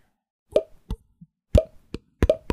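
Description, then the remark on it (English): A quick, irregular series of about eight soft, bubbly plops as furballs pop out, set off by drips of built-up moisture hitting them, each short with a hollow mid-pitched tone, one fainter than the rest, and no voices. “Well, it starts popping out more furbals.”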